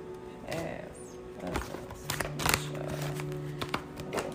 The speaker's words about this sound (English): All right, so let's see what we have. I'm shuffling. Y'all can hear me shuffling. Okay, let's see what's going on.